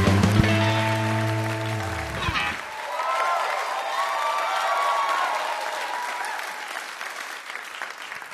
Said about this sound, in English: That was a rapturous applause. Is that the greeting that you get now as a New York Times bestselling author when you enter most rooms?